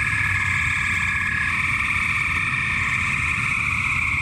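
A dense, unbroken chorus of spring peepers at night, recorded from a second-story bathroom window about 20 yards from the woods, countless shrill high-pitched peeps blending into a steady ringing drone over a soft low rumble, with no voices.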